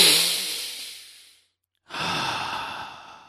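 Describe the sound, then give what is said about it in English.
A long, deep breath in and out: a breathy rush of air that fades out, a short pause of silence, then a second slow, airy breath. No talking. “Take a long deep breath and focus on your breathing in and out, in and out.”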